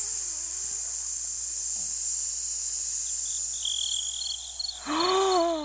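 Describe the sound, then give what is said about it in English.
A steady chorus of chirping crickets as a sound effect fills the background, a continuous high-pitched trill with scattered brief calls, ending with a short rising whistle-like sound near the end. “No, you get the crickets.”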